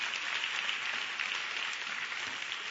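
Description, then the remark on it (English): A church audience claps together in a steady, dense wash of applause that holds at an even level for a few seconds, with no voices cutting through. “Give a hand clap if you did.”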